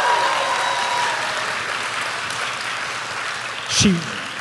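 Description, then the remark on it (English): A steady round of audience applause for an AI robot at a show, a dense wash of clapping that holds for several seconds, with a brief vocal whoop or shout rising out of it near the end. “Now, before we move on, can a round of applause for our AI robot, please?”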